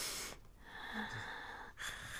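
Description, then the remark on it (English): A voice imitates heavy, wheezy breathing: two or three raspy, drawn-out breaths with a whistling edge, fairly loud, with no talking. “Okay, I don't like heavy breathers.”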